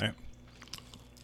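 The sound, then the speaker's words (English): Chewing of a beef stick with cheese: a few moist, smacking bursts at an irregular rhythm, fairly quiet, with no clear words spoken. “Oh, I almost couldn't chew it. That's delicious. With the cheese and the beef.”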